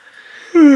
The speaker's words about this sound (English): Snorlax used yawn.